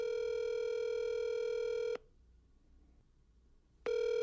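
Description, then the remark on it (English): Telephone tones before a call to Riverside Bank connects: a loud, steady electronic tone holds for about two seconds, falls silent for nearly two seconds, then starts again. No one speaks. “And I mean, well, let me just play the phone call for you.”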